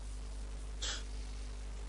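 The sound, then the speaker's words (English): A single short, diplomatic cough at a dinner table, a soft breathy burst lasting under a quarter second, set against a steady low hum with no talking. “There's a slightly diplomatic cough”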